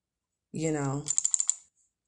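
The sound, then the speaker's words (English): A quick run of about six sharp computer keyboard clicks tapping in an even rhythm, fairly crisp, as someone works at a computer at work, preceded by a short, sliding tonal sound like a voice or creak. “So if y'all heard a click clack of my mouse, rolling in my chair, tapping on keys, squeakiness of my chair, then you know what's up.”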